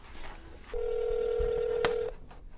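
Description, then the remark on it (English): A telephone number is dialed by a finance worker calling his niece in Las Vegas: a single steady electronic phone tone holds for well over a second, interrupted by a sharp click near its end, with no one talking. “He's reaching for the phone.”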